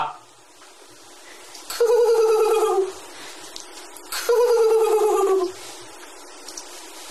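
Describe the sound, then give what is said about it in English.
A person vocally imitates an eagle's cry twice, each a loud, drawn-out screech that slides downward in pitch, with a short quiet pause between the two calls. “That last one was a mockingbird imitating an eagle.”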